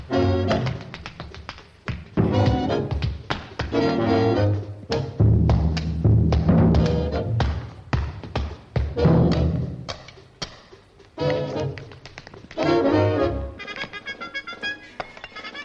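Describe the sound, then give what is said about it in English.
A man plays two giant drums with both feet and with drumsticks: a busy, driving rhythm of sharp taps and deep bass-drum thumps, loud, running nearly nonstop with brief dips, no voices. “He's got two giant drums next to him, and he's using both his feet to tap and to bang the drums, and then also the drumsticks to drum as well.”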